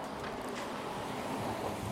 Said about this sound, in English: Car.